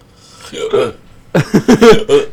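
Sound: imitated hiccups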